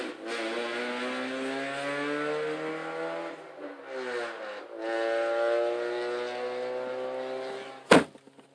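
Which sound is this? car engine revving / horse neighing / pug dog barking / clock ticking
car engine revving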